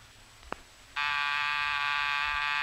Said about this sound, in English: was that the front door buzzer? Yes, sir.